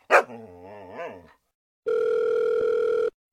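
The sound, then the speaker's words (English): Al Kooper's dog lets out one sharp bark that trails into a wavering, whiny yowl. After a short pause, a steady electronic tone like a telephone dial tone hums for about a second. “Each of Al's comments is followed by a short additional comment by Al's dog.”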